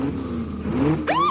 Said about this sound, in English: Hold on with the engines. Keep this as real as we can. With the car in the background.